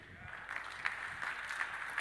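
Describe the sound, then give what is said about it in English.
An audience claps steadily for about two seconds, a dense, even patter of many hands with a few sharper claps standing out. The clapping is fairly soft overall. “You're clapping and saying, the problem is that we connect sin.”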